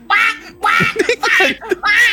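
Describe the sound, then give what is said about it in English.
Someone imitates a chicken, giving four loud, nasal squawking clucks in quick succession, with no other talking. “And just, what sound does the chickens make again?”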